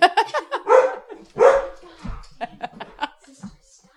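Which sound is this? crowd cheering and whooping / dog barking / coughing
dog barking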